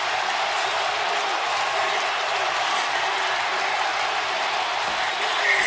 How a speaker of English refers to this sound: Hatterberg is mobbed at home plate. The crowd comes back to insane life.